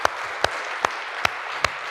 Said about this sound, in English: Can we give God a hand today? I just feel like let's give God a hand.